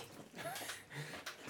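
Chubby, Joe Rogan's dog, pants in quick, breathy bursts in a studio, with a few brief, thin whimpering tones slipping in between the breaths.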